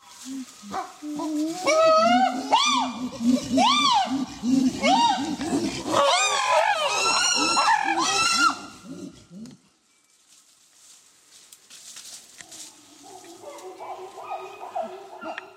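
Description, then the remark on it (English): A group of chimpanzees pant-hooting together, recorded at the field site of Tufts researcher Zarin Machanda; overlapping voices climb into loud, shrieking rising-and-falling calls for several seconds before the chorus drops away to softer, scattered calls. “This is chimpanzee pant hooting taken at her field site.”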